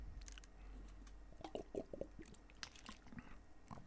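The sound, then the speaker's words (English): Close, wet mouth sounds of someone drinking water, with a run of soft gulps and swallows in the middle and small smacks and clicks around them, no talking. “Just drinking water here.”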